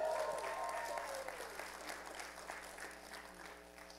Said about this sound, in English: Hold hands. Clap for them.